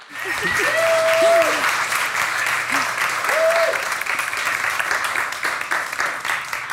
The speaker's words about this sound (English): Let's have a big round of applause for Annalee Newitz.